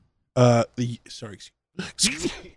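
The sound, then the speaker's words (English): A single sharp sneeze bursts out near the end, loud and breathy, following a few short voiced vocal sounds. “Bless you.”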